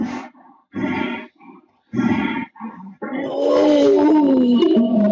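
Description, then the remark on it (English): A voice imitates a bull's growl: several short, gravelly grunts in bursts, then a long, rising and falling moaning call that holds steady and loud to the end. “So understand what that sound represents, and now you can add it to that growl.”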